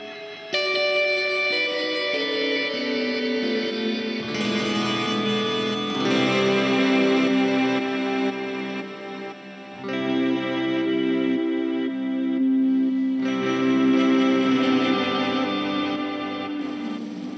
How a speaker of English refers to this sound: This is the Rêver. I love it. R-E-V-E-R. Yeah. It's a palindrome. It's a reverb and delay. reverse reverb is part of the picture.